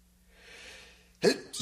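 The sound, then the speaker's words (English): A soft rising inhale builds for about a second, then a sharp, loud sneeze caused by allergies bursts out, followed by a second quick burst. “Bless you.”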